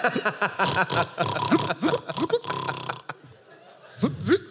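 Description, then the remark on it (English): A voice imitates a snore with a rapid, rattling burst like machine-gun fire, a fast throaty stutter set among short grunting vocal sounds, fairly loud and choppy, then a brief pause before another grunt. “You have some that are like real like that, like a machine gun going”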